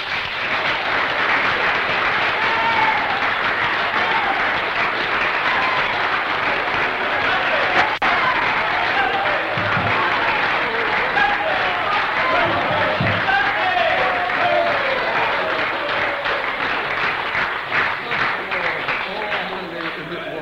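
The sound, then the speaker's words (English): An audience claps heartily for Jesus, steadily for about twenty seconds, a dense wash of applause that holds at an even loudness, with scattered voices mixed into the crowd noise. “Shall we start off with giving Jesus a hearty clap?”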